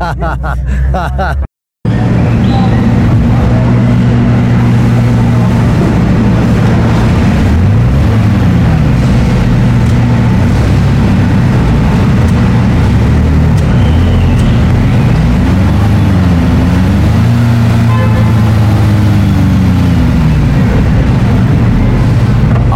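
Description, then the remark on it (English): A car engine runs steadily and loudly, its low hum rising and falling in pitch as it revs, with a brief dropout near the start, as the car is driven on a rolling road, a room that lets the car be driven while static, and is put through its paces in all gears. “Inspection and testing, the car is driven onto a rolling road, a room which enables the car to be driven in the static mode.”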